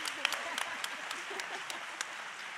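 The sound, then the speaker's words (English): A crowd gives Jesus a round of applause, many hands clapping steadily in a dense, even wash with a few sharper claps standing out, while faint voices murmur underneath. “Come on, give Jesus one big round of applause.”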